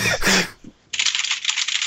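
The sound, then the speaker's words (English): Loud, rapid typing of random letters on a computer keyboard during a live stream, a dense run of sharp clacky keystrokes, following a brief burst of louder noise at the start. “Whoever is typing is doing so very loudly, please stop.”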